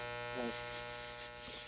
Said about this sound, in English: Is that interference again? Yeah, it's because I had to shut off the light. I went near the TV.